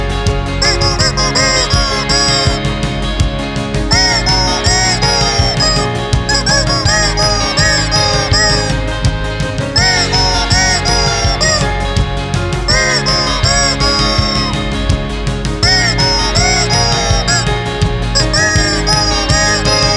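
Rubber chicken squeeze toys squawk out a song, their honking, nasal tones bending up and down in a melody over a steady backing, loud and continuous with phrases repeating throughout.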